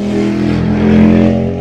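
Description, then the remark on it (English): A loud motorcycle engine roars past, its steady droning pitch swelling toward the middle before easing off slightly, with no voices over it. “It was a rather loud motorcycle.”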